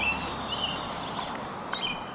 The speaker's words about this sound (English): The birds are really cranking it up right here near the Oracle. I think they gather around because they want to be part of the oracular experience, you know.